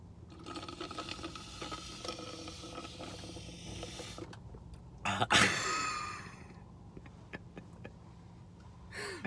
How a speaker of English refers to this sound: Did you burp in the middle of that wheeze?